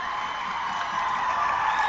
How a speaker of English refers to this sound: And the Northwest players are fired up. That got the crowd fired up, the student body fired up,